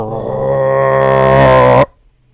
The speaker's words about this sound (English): A roar outside gets closer.